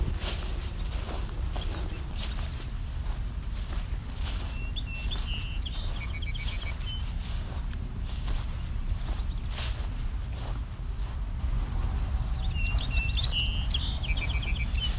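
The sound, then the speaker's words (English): A red-winged blackbird sings twice, each short buzzy trilled phrase several seconds apart, over a constant low outdoor rumble with occasional soft clicks. “Red-winged blackbird.”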